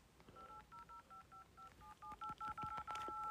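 A phone number being punched in to call poison control: a quick run of about a dozen clear, beeping keypad tones, each a short steady two-note chirp, speeding up slightly toward the end with no talking.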